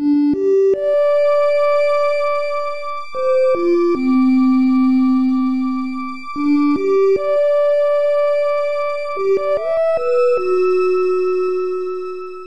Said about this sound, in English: Beautiful. There's that lovely MIDI noise that comes out of the speakers when they make it do that. So, we meet again, Civilization.